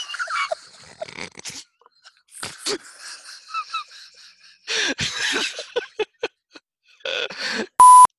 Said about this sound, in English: Phone's going,